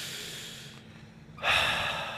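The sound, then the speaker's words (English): Deep, slow breathing as a breathing exercise: a long airy breath, a brief lull, then a louder, forceful rush of air that carries to the end. No one speaks. “you with your breathing exercises”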